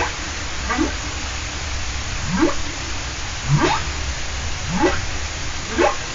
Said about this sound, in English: Let's go to the ocean now and take a listen to the humpback whale, and this was recorded at Glacier Bay National Park and Preserve in Alaska.